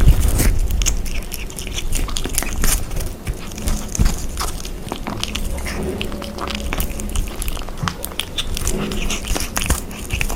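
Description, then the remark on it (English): A kitten chews sausage with a steady stream of wet, smacking clicks and soft crunches lasting throughout, over a low continuous rumble of purring, with no talking. “presents Kitten Eating Sausage.”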